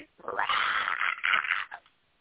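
A cat lets out one long, drawn-out yowl lasting over a second, wavering in pitch with a brief catch near the end, with no talking.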